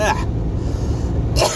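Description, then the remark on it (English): Two harsh, phlegmy coughs, one at the start and one near the end, fairly loud, with a low steady rumble of background noise in between. “Well, at least it's not a dry cough.”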